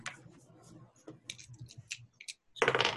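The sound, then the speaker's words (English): A six-sided die clatters across a hard tabletop, a string of light irregular clicks and taps, then a louder rattling burst at the end as it tumbles and settles, landing on one. “The dice are in your favor.”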